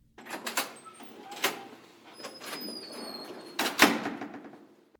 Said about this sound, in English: The front door opened.